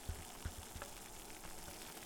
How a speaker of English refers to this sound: The water here is just starting to boil.